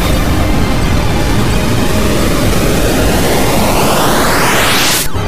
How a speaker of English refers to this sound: Now, do it. Hyperdrive engines engaged.